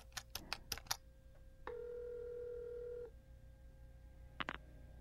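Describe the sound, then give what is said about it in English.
A wall telephone is dialed: a quick burst of five or six clicky dialing taps, then a steady electronic tone held for about a second and a half, followed by a couple more faint clicks. No one speaks. “I took the phone from the wall and dialed Alice.”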